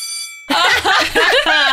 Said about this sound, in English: Oh look, the Bell of Academic Clarity is back from its holidays in the Algarve. Did you have a nice time?